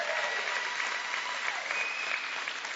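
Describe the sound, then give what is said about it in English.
An audience gives the Lord a hand clap together in dense, steady applause, many hands overlapping into a continuous bright rush that holds at an even level for the full few seconds. “Somebody give the Lord a hand clap for that.”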